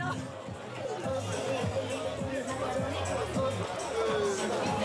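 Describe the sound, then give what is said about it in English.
A dense babble of many voices chattering at once, loud and continuous with no single speaker standing out: a noisy crowd of tourists on Ballermann Beach, Mallorca. “As the noisy crowds of tourists along the so-called Ballermann Beach became increasingly synonymous with the image of Mallorca, calls for more restrictions on the partying masses grew louder.”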